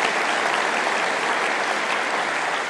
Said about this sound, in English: And just want to thank that team, them and their wives, do a tremendous job running that. And so can we just give those guys a round of applause? They did a great job.